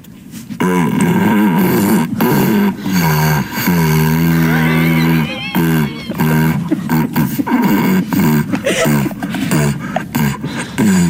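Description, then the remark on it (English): A dog breathes and snorts heavily through an empty cardboard paper towel tube held in its mouth, making loud, resonant, hollow honking and rumbling sounds in continuous bursts with brief pauses between breaths. “And, yeah, he decided to, I guess, breathe through it pretty heavy and then run away from his owners.”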